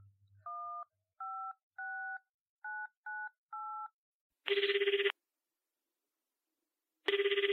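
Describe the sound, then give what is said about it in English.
Six touch-tone keypad beeps dial a number in a quick, slightly uneven rhythm, followed by two loud bursts of a phone ringing on the line with pauses between, with no voices. “I will put Maslow down and go to the phone and dial the phone number.”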